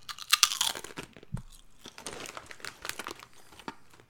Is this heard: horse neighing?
no